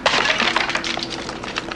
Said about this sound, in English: He shatters a prop by holding it too hard.